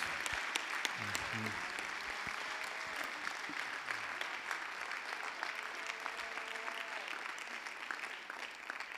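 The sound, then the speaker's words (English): An audience breaks into sustained hand clapping as praise to God, a dense, steady wash of many overlapping claps lasting the whole stretch, with faint voices murmuring and calling out underneath. “Come on, somebody give God a hand clap of praise.”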